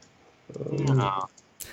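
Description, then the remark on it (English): A few light, scattered clicks of computer keyboard tapping, fairly quiet, alongside a brief voiced sound in the middle and a sharp hiss at the end. “Well, I guess you're hinting much tapping of keyboards that. Going on here.”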